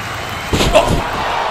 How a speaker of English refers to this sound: What in the world? The Nacho Man, Sandy Ravage, just clobbered Hope Hogan with a steel chair.